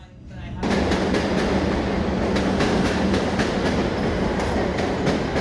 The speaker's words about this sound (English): how was it getting on the train? Haven't been on the train for ages. It's been a long time since I've been on the train.